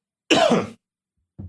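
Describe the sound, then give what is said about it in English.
A single loud cough bursts out harshly, followed after a brief pause by a softer, short throaty sound, with no talking. “I'm going to cough here.”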